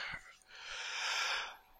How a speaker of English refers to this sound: What a fucking time to yawn.